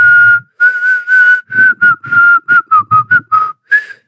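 A person whistles a short, steady tune, a string of clear, breathy notes of varying length with brief gaps between them, and no talking.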